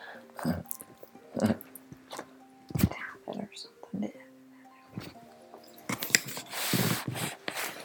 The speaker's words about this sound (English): She's chewing that right beside the microphone.